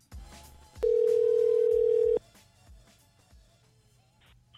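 A single steady, loud telephone dial tone holds one mid pitch for about a second and a half, then cuts off abruptly, with quieter rhythmic thumping beneath it before and after.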